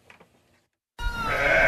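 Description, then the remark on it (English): After a moment of faint background murmur, a sheep at Blue Pepper Farm, a small sheep's milk yogurt farm in Jay, lets out a sudden, loud, drawn-out bleat, its wavering cry holding steady to the end; recorded in April 2022. “This next North Country Work Story takes us to a small farm in Jay making sheep's milk yogurt.”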